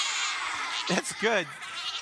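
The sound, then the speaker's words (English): Voices imitate a sheep's bleat in answer to a question about what sound a sheep makes: two short wavering "baa" calls about a second in, rising over a steady background hiss of a crowd. “What kind of sound does a sheep make?”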